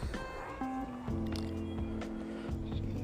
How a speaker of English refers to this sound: Sorry I was quiet for a second. A motorcycle just went across the road loud as shit.